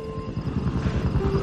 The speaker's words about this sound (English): It sounds like there's a helicopter in the distance. Is it just me or has there been like a lot of helicopters lately?